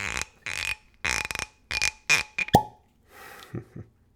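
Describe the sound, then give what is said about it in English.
A cork pops sharply out of a bottle of Talisker whisky after the foil is removed and several bursts of squeaky twisting and scraping, followed by a couple of soft knocks. No one talking. “And the pop.”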